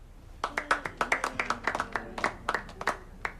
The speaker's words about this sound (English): Can we get a cheer from the Ryman's gang?